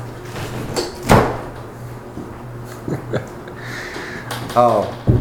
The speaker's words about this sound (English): Make sure you close that door all the way.